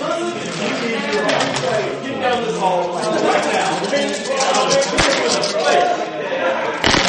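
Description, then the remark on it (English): Several dice are rolled at once by a group of players, clattering across a tabletop in a flurry of sharp, rattling clicks beneath overlapping chatter from the group. “Everybody roll the dice.”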